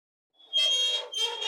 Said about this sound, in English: What is it? An X-ray machine. Stop. An X-ray machine. What? Back in 1990? I'm confused as well. Wow. I am confused. But this official soundboard website has that as the sound of an X-ray machine.